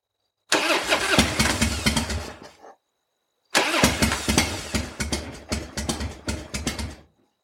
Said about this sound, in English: I not want to, but I must take motorcycle. Now. Start motorcycle again.